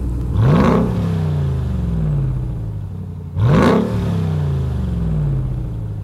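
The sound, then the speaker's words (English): A 392 V8 engine with its stock exhaust, heard before a Borla TRX exhaust for comparison, revs up twice, each throttle blip rising sharply then settling back to a steady, rumbling idle, loud with no talking. “So we'll do, just like we did, we'll do before and after. Here's stock.”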